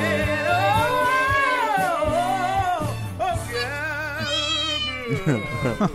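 Cat meows pitched and strung together into a bouncy novelty tune over a steady musical backing, sustained and wavering, loud for several seconds.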